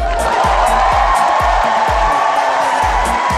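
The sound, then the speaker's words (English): A loud stadium crowd applauds and cheers without pause, a dense wash of clapping and voices, with a steady beat of low thumps recurring roughly twice a second underneath. The crowd is applauding the players John Isner and Nicolas Mahut after their 11-hour, 5-minute match that ended 70-68. “So, the warmest applause for the two players, John Isner and Nicholas Mahu.”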